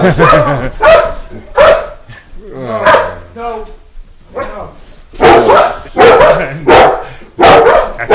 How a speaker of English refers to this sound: Call off the dog. Yeah, don't let the dogs out. Yeah, the dogs freaked out.